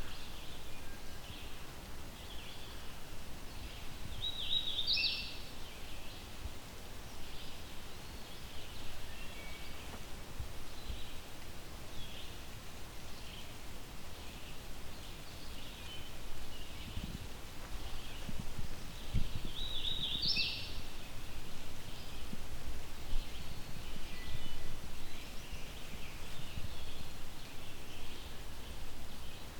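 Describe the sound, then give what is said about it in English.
A male hooded warbler sings two short, clear whistled phrases, around five and twenty seconds in, set against a steady rustling woodland background with no talking. “I still can't see this bird, but mostly yellow, black hood is what you would expect with a hooded warbler male.”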